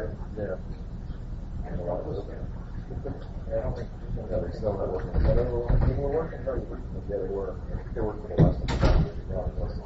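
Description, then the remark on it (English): A door slides and thuds shut with a couple of dull knocks partway through, while voices keep talking over it in the foreground. “Well, you can also close the door, too.”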